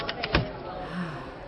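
The lever on the side of a reclining chair is pulled with a few quick ratcheting clicks, followed by a soft mechanical creak and groan as the chair tilts back.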